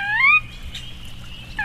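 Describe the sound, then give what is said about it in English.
A sora's whinny call: a bright, whistled descending series with clear harmonic tones, strongest at the start then trailing off, with a brief note returning at the end over low background rumble. “In a group is collectively known as an ache, or an expression, or a whinny of soras.”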